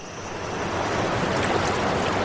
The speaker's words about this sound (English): The water feels like ice-cold daggers crashing down onto me as I plunge forward into the void.